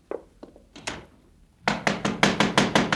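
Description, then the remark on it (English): A few scattered knocks at first, then a loud, rapid run of heavy pounding on a door, about eight blows in quick succession. “Just a minute. Don't knock it down.”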